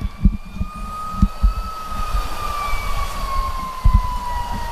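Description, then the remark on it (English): A far-off emergency siren, heard in a silent stadium during a game between the Briarcrest and Pope John Paul teams, holds a long, steady wail that slowly drifts lower in pitch, with soft low thumps and rumble underneath and no one speaking. “Other than the siren that we hear out in the distance, it is complete and total silence here in the stadium.”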